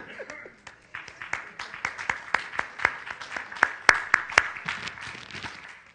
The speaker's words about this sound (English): Okay, you can clap. That's all right. I'll clap with you.